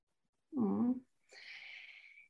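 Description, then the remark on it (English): A female house cat gives a single short meow with a bending pitch, followed by a quieter breathy, hissing sound lasting about a second. No one speaks. “Our cat I love agrees. That. I love that. That's her underlining what you say.”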